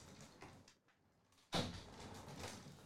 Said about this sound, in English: Sorry, I had to shut the door there.